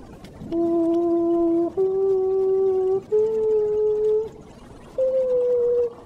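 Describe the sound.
A voice imitates the call of a pearl-spotted owl, a tiny owl of Africa: three loud, sustained whistled notes, each slightly higher than the last, then a brief pause and a fourth, higher note. No talking.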